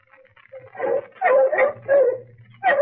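Several bloodhounds bark and whine in quick, uneven bursts, fairly loud, their voices rising and falling in excited yelps and whimpers with a low rumble underneath, as they stop after losing a trail in the dark.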